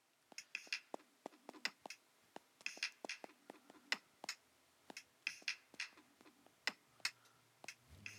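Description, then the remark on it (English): Maracas shaken in a steady rhythm, crisp rattling bursts arriving in quick clusters for about eight seconds, fairly quiet and with no voices. “Maracas.”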